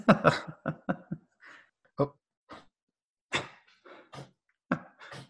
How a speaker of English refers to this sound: Can you hang on 1 second? I'm sorry to yeah, yeah, hear it. Yeah. Yeah, I got a dog deciding to chime in.